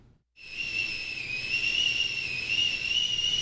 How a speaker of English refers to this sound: Yes, something's screaming in the kitchen. It is the tea kettle. It's time for tea.